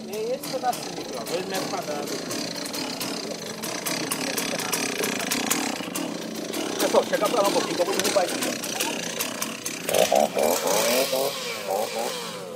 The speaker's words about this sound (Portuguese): Observando, eu percebi que o processo era sempre o mesmo. Primeiro, entrava a motosserra. Depois, a retroescavadeira fazia o buraco.